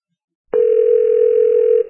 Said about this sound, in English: All right, it's ringing. That's a good sign.